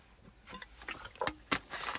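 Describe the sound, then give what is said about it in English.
A few short, quiet slurping sips of sweet tea, each a brief wet burst with a sharper gulp near the end, then a soft trailing hiss. No one speaks. “Let me give me a sip.”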